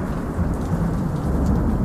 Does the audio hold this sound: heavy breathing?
no